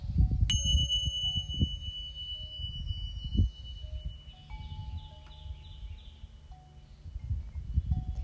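A single bell is struck, its clear high tone ringing out and slowly fading over several seconds above a low rumbling background.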